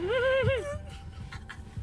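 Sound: person imitating dog barking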